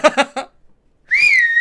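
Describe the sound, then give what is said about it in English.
A loud, shrill whistle of the kind used to hail a cab, given as a demonstration of how to hail a cab, swooping upward in pitch and then held steady. It comes after a few quick spoken syllables and a short pause. “He's hailed a cab like that before.”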